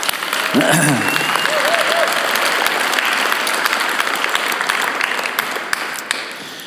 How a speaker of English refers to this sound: But this has actually been a big week for our team of volunteers, and so I just want to give them a round of applause.